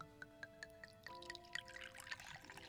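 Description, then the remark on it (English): Liquid is poured into a glass, trickling and splashing softly as the ringing tone of the glass steps upward while it fills. Quiet, with no voices. “Now pour me another.”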